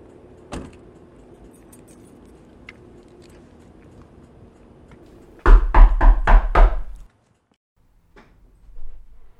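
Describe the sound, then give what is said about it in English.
A car's low engine rumble runs steadily, then a quick cluster of about five heavy jolting thuds as it comes to a stop, followed by near silence and a faint later rustle. “The car's stopping again”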